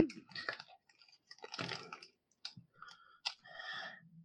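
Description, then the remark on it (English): Irregular, moist chewing and crunching of food wrapped in foil, mixed with sharp crinkly clicks of the foil being handled, in uneven bursts of moderate loudness with short pauses between and no talking. “Oh, I almost ate the foil.”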